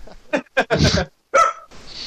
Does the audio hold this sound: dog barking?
yes